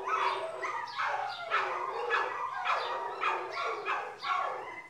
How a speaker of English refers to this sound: So whenever we hear dogs barking a lot in the background, we scream out, Farfel! Oh, here we go. Now we've got Farfel's a howling. That is so funny. We do have a lot of dogs next door to us.